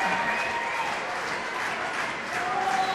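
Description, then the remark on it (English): The Adams Central crowd at a volleyball match comes to its feet at set point, applauding and cheering in a steady, dense wash of clapping and shouts, loud and sustained for the whole three seconds with no clear breaks. “The Adams Central crowd comes to their feet.”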